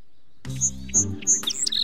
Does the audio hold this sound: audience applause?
no